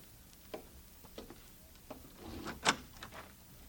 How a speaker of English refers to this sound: All right, Bob, open the door for them.